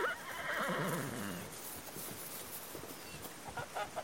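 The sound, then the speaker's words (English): A horse lets out a long, wavering whinny, followed by a scattering of hoof clops on the ground as two brown horses trot past a pig pen and a pond, shaking their long manes in a cool breeze, with no voices present. “Just past the pig pen, two brown horses come trotting into view past the pond, shaking their long manes in the cool breeze, going neigh, neigh.”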